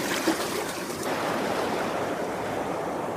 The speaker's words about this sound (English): I think that rapids flipped more boats in this river than anyone.